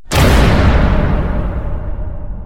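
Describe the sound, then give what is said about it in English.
A heavy steel jail door slams shut once with a loud, sudden bang, followed by a deep booming rumble and a faint metallic ring that slowly fades over about two seconds. “They died in jail, but they had a good run before they heard the slam of a steel door.”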